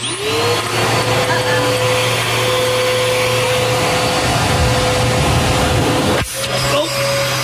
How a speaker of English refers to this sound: All right, so I numbered 70 ping pong balls to represent the power balls, and now we're going to turn on the vacuum. We're going to suck up 5 balls and then the power ball.